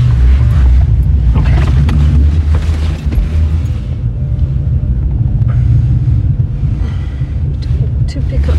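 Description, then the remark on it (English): Heavy trucks rumble by on a busy road, a loud, continuous deep engine drone, with gusty wind noise buffeting the microphone throughout. “Get out of the way because this is tight, full of trucks.”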